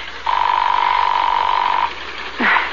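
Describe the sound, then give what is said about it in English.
A single long, steady ring tone on a phone line, calling a home number, holds at a mid pitch for about a second and a half, then stops, followed by a brief faint rising sound. “It's ringing.”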